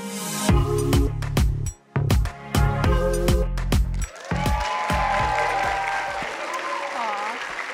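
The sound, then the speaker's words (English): A church audience at Journey Church bursts into loud, sustained applause during a morning service, a dense rattle of clapping, with whoops and high cheering voices rising over it in the second half. “So y'all did a good cheer this morning.”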